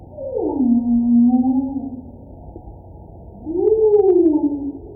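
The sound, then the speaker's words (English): Two long, sweeping tonal calls from a humpback whale, picked up by underwater listening devices in and around New York Harbor, each gliding down then leveling off in a low moan, with a quiet gap between them over a faint underwater hiss. “I think the most common sounds that we are hearing are from humpback whales.”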